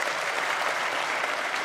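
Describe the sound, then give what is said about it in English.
A crowd applauds steadily, cheering the archangel Michael during a Bible teaching: a dense, even wash of many hands clapping at once that holds a constant loudness throughout the short stretch, with no voices standing out. “Don't applaud for angels.”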